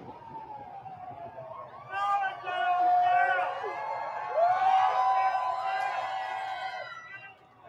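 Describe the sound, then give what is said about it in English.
A crowd at the courthouse cheers and shouts in a loud, sustained swell of many overlapping voices, while a wavering siren wails through the noise as Trump's motorcade arrives and passes. “That's a cheerful welcome for a criminal going to court.”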